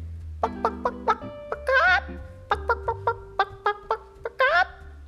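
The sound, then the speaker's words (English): A hen clucks in quick bursts of short clucks, broken twice by longer rising squawks, over a soft, steady low hum in the background. “The hog in his sty, the goose in her pen, and the coop which was home to the fat red hen.”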